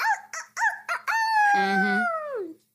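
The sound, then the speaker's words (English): Someone mimics a rooster crowing, imitating the character Rooster from Annie: several short choppy notes, then one long drawn-out cry that slowly slides down in pitch and trails off, loud, with no other talking. “You know Rooster from, Rooster from Annie. They be like...”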